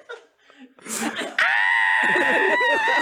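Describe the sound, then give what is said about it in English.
After a moment of scattered laughing vocal sounds, a person bursts into a loud, sustained, high-pitched scream that holds steady for nearly two seconds, piercing. “I like starting off the podcast with screaming and violence.”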